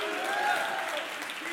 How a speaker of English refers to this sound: Come on, clap your hands and shout hallelujah.